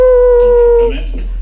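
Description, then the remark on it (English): A single long wolf howl holds a steady, clear pitch for nearly a second before trailing off, followed by faint, muffled voices. “Did you hear the wolf?”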